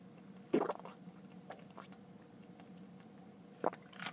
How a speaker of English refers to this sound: My apologies. You got to get some water every now and again on these. That's huge.